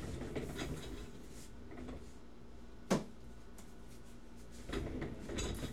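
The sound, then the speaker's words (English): An office chair rolls across the floor with a low, rumbling scrape, broken by a sharp click partway through and a final short roll near the end. No one speaks. “You hear my rolling chair.”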